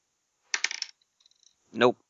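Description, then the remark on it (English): A quick clattering rattle of dice tumbling across a hard tabletop in a game roll that comes up 4 successes, then a few faint ticks as they settle, followed by a short spoken exclamation. “Alright, so 4 successes. And do nice. 6s explode?”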